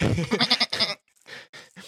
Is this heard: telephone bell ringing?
no